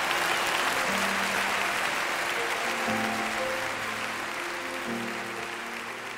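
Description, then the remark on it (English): Loud, sustained applause from a large crowd for speaker David Ring on Focus on the Family fills the whole stretch, a dense steady roar of clapping with a faint low musical tone underneath that slowly fades. “Well, that thunderous applause will wrap up this two-part Focus on the Family broadcast featuring David Ring.”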